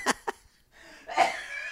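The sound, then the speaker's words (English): Two sharp, quick coughs, then after a short pause a longer, raspy, wheezing burst, like someone caught in a fit of coughing. Moderately loud, no talking. “Oh, now we're having a coughing fit in the middle of the show.”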